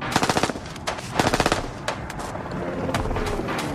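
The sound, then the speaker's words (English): Rapid bursts of automatic gunfire during a road chase between a swerving vehicle and a helicopter firing a machine gun, with a man firing from the vehicle's side window. Two sharp rattling volleys of fast repeated shots with a few single cracks between, over a steady roaring engine-like rumble. “Ambridge fired.”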